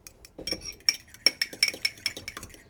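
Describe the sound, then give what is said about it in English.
A fork rapidly whisks an egg in a bowl, producing a quick, uneven series of bright metallic clinks and taps against the bowl's side, with no talking. “Let's whisk this egg up.”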